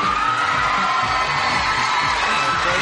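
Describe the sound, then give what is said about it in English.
A crowd applauding and cheering in a sound clip played from a soundboard, with a steady wash of clapping and excited shouts and whoops layered throughout, loud and sustained for a few seconds without letting up. “So everybody give Foggy a round of applause.”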